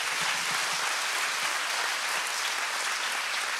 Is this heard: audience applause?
yes